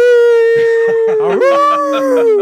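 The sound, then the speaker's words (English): A loud, drawn-out wolf howl sound effect, played by pressing a button, holds one steady, pitched note that lifts slightly partway through, while a person talks over it. “You got the wolf button? Hit that wolf button.”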